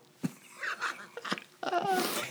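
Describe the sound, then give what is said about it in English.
A person makes a mouth-imitated fart sound, a few short vocal bursts followed by a longer, buzzing raspberry, fairly loud and with no clear speech. “That would be a fart. Oh, thanks for the sound effect. Can you do that again?”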